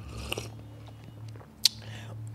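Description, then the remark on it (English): Two short mouth sounds of someone sipping tea, a soft one early and a sharper slurp later, over a steady low hum with no talking. “Let me sip a little tea before I spill some tea.”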